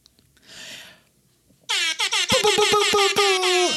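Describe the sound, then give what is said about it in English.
A loud air horn sound effect blasts in a rapid stuttering burst of repeated honks, the classic hip-hop style horn, after a brief soft noisy swell. “That was a delayed air horn, rap air horn.”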